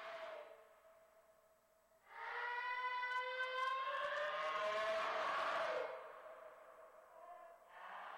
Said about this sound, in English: But this does sound like a human scream, and if this is the case, it says the audio was amplified 20 times. Nothing else was done to the audio. So it wasn't this loud. But it was turned up, but this is it, 3:12 a.m.